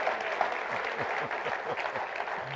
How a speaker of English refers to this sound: I told you they'd cheer.